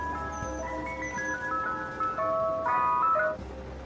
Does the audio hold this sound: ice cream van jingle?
yes